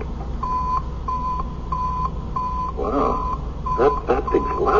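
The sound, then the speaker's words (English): A just-assembled electronic receiver, switched on for a test, emits a steady series of short, evenly spaced high beeps, about two per second, while muffled voices murmur underneath toward the end. “Now, all ready to test it. All systems go. Hit the receiver switch.”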